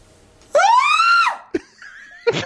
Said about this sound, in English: That's more of a scream.